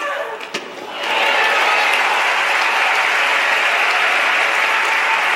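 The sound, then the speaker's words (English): A tennis crowd rooting for Davenport over Serena bursts into loud, sustained applause after a brief quieter moment, as Serena hits the ball into the net in the second set, the dense clapping mixed with cheering voices and holding steady to the end. “The crowd erupts.”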